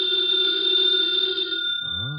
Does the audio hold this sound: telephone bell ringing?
yes